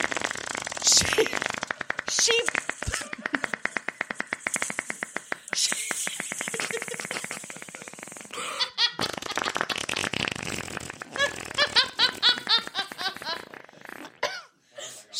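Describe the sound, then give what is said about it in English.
A loud, sputtering fart noise blown by a woman into her hands held up to her mouth, imitating flatulence as a joke for several seconds, followed by bursts of laughter. “And she puts her hands up to her mouth and does the fart.”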